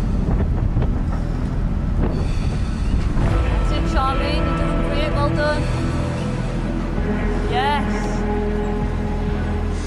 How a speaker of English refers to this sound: The wind. This is really windy.